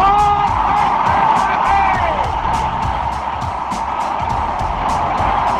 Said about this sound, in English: Willie Mays just brought this crowd to his feet with a catch, which must have been an optical illusion to a lot of people.